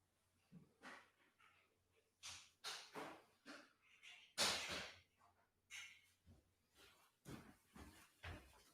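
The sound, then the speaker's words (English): A door being opened as someone goes out, with a run of irregular knocks, rattles and scraping bursts over several seconds, the loudest clunk about halfway through. “It heard me open the door and then ran back under, it ran under your car.”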